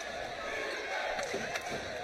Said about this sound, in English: Crowd has come alive here at Lynn Cottrell Arena. 68-61, North Georgia up by seven.